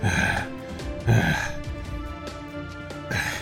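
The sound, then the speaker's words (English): The badly beaten, bloodied character Mokbirion, shifted back into his own form, gasps for breath: three ragged, heavy gasps spaced unevenly with a strained, throaty rasp between them, with no words spoken. “And he is gasping.”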